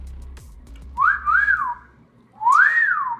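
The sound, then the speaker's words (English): A person whistles into a microphone: two short wavering tones, a pause, then a longer rising-and-falling whistle, fairly loud with a breathy edge and no talking. “I never heard someone whistle into a microphone, but I'm sure it's not an appealing sound.”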